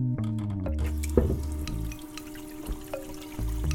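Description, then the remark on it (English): Water from an open faucet runs steadily into a kettle to make a cup of tea, a continuous splashing stream with rising resonant tones as the vessel fills, plus a few clinks and drips. “Let's take a kettle, open the faucet, watch the water running in a stream into your kettle.”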